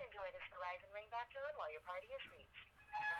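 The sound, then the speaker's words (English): Tinny telephone hold music plays through a narrow phone line while a caller to Smeco waits to be transferred to an agent, a steady melodic tune of wavering sustained tones that runs without a break and sounds compressed and thin. “Not a lot of glass shattering. Unless glass shattering sounds like hold music.”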